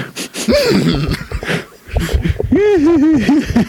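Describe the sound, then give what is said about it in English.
A human voice imitates a horse whinny: a short rising-and-falling vocal sweep, then a longer, shaky, wavering whinny with a rapid pitch wobble, loud and breathy, with no other speech. “I could never get a horse noise.”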